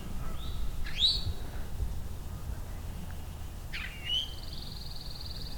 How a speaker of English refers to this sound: Pine warbler in the background. Northern cardinal as well.